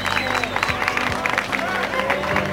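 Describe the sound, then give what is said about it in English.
A crowd applauds Yoko Ono at the dedication of Strawberry Fields in New York's Central Park, with steady, dense clapping that stays fairly loud throughout, mixed with a murmur of voices and scattered calls underneath. “People applauding for her.”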